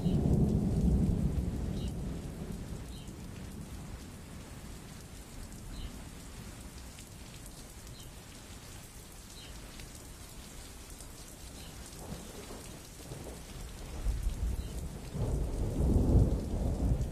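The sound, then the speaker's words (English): Distant thunder from a storm rumbles low and rolling at the start and again near the end, over a steady hiss of falling rain, with no voices present; a nature recording by an artist. “So we're going to go out today on the sounds of distant thunder, beautiful storms of nature coming to us, and this from the amazing work of ….”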